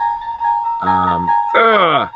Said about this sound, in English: I'm sorry, Crystal. I should have muted my phone.